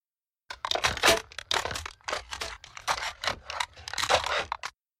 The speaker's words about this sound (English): That sort of aluminum TV tray crunching with the dog in the door reminds me of right about what I would have pictured a regular RV door would sound like.